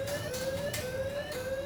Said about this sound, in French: Au même moment, une alarme retentit.